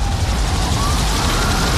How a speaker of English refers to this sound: Helicopter's taking her away there.